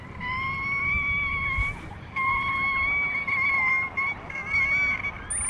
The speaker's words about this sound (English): In the marine environment, sound is essential for survival. Killer whales use echolocation for navigating, communicating, and finding food. The range of sounds is vast, from grunts and snorts to discrete squeaks